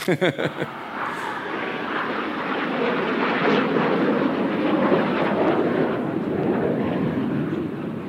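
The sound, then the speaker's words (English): A voice imitates a jet plane, starting with a few short sputtering bursts and then settling into a loud, steady, breathy roar that holds for several seconds before easing off slightly. “Do you guys know jet plane? If you live in Richmond, you know this.”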